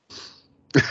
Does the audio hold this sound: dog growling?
no